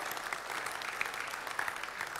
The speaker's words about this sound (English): Let's give her another round of applause for sharing her story.